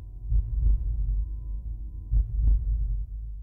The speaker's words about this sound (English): down on the ground and I put my ears on earth. And it was my first time ever to hear earth's heartbeat. Boom, boom, boom, boom. And I had no idea up until that moment that Earth has a heartbeat, is alive.